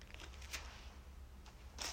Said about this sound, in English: If you hear any pages turning, I'm flipping the pages of the Bible. So, as I'm in the book of Jeremiah, this is Jeremiah's encounter with God.